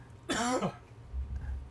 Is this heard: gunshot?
no